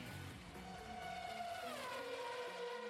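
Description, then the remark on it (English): A steady, loud car engine drone with strong harmonic whine, its pitch sliding down partway through as if the vehicle shifts or passes by; no voices. “That's an actual car or something.”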